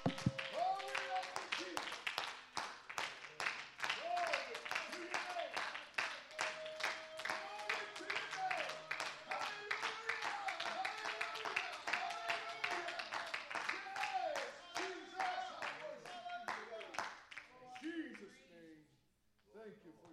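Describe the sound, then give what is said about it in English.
An audience claps steadily and loudly for about seventeen seconds as a hand clap of praise to Jesus, dense overlapping hand claps with voices calling and singing out over them, before the clapping fades away. “Can we give Him a hand clap of praise today?”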